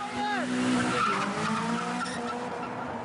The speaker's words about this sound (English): Drifting is skidding the car sideways as you travel forwards. This leaves wavy tyre marks along the road.